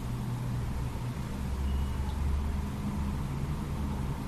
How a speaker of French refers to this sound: Je peux être là, au milieu des voitures qui passent et qui arrêtent de passer.